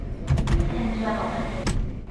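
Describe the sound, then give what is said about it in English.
A subway train door slides along its track with a mechanical whir, framed by a few sharp clunks and thuds at the start and end. “Subway door opening. Subway door closing.”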